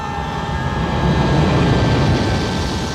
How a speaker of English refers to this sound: They're out on the playground, laying on the ground, waiting for a plane to fly over, like that scene in Wayne's World.